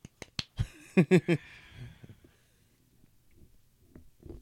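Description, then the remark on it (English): A few soft, sparse golf claps tap out near the start after a DJ set, followed by several quicker, louder bursts, then faint scattered clicks trailing off. “Golf clap.”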